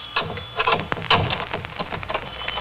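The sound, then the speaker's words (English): Clattering handling sounds: a key scrapes and rattles in a lock, a couple of sharp clicks as it turns, then the soft rustle and knock of a door being pushed open. “Until I unlock my door.”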